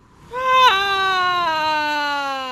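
During a deep-breathing exercise, a person lets out one long, loud, high-pitched scream on an exhale. It wavers briefly near the start, then holds and slowly sinks in pitch as the breath runs out. No talking.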